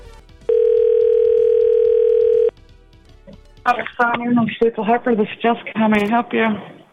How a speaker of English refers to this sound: microsip sounds. Here, let me dial a number for you.